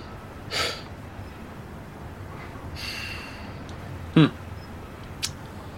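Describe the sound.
A voice imitates the character Marana breathing heavily, standing in a room with a pile of bodies: a few rough, airy huffs and snorts spaced over several seconds, moderately loud, with one sharper exhale near the end and no talking.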